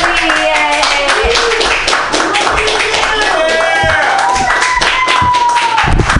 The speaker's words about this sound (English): I'm just gonna run around, and you're gonna clap.